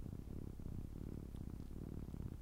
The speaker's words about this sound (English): Let's hear cat purrs.